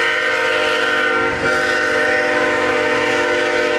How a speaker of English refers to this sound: Yeah, we're going to lose sound a little bit because the train.